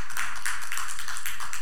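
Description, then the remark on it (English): A burst of spontaneous audience applause, many hands clapping in a steady, bright patter that holds fairly loud through the short stretch with no one speaking. “Thank you for that spontaneous applause.”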